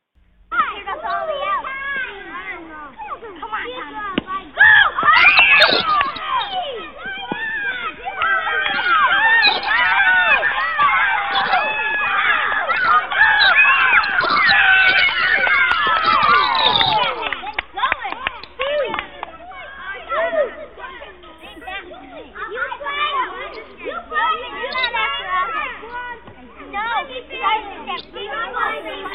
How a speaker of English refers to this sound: Yes, boys and girls, that's the sound of children playing.